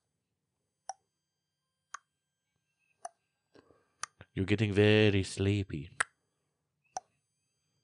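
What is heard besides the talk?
clock ticking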